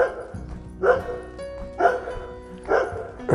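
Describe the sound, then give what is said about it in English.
A dog barks three times at an even, unhurried pace, each bark short and sharp, standing out clearly over a low, steady background hum. “I don't know if it is that same dog, but certainly he's a barker.”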